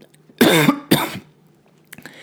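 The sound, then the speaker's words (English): Two loud, harsh coughs, one right after the other, a voice acting out a cough, followed by a brief quiet rustle. “I sign in and I sit down and the person next to me coughs on me.”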